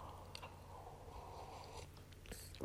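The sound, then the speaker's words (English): Quiet mouth sounds of someone sipping hot coffee, with a few soft slurps and small swallowing noises over a low background hum, and no talking. “I'm going to take a quick coffee sip here.”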